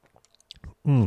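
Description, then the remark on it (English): Soft wet mouth clicks and a quiet swallow from a sip of homemade cider sweetened with Splenda, followed right away by a loud, sustained, satisfied voiced 'ahh'. “So, a sip of reading cider.”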